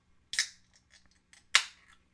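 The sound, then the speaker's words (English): Two beer cans are cracked open to fill a pint glass, about a second apart, each a sharp metallic snap followed by a short fizzing hiss that fades quickly. No one speaks. “I've got a couple of cans here to fill my pint glass.”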